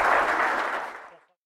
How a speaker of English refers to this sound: Excellent. Round of applause, guys.